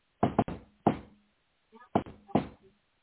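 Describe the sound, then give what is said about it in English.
Sharp knocks on a hard surface imitating a man's signature knock on a door with his pocket knife, in a distinctive pattern: a quick double rap, a single knock, a pause, then two more spaced raps, with a faint murmur in the gap. “It sounded like him knocking on the door with his pocket knife, which was what he always did.”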